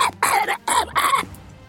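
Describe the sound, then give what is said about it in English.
A voice mimics a poisoned fish-like creature coughing and hacking, about four rough, raspy bursts in quick succession, loud, with no other talking. “It coughs and hacks really grossly.”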